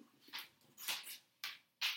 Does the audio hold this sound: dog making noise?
yes